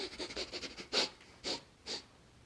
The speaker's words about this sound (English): And he heard something around the door, sort of, I don't know, nudging at the door and sniffing.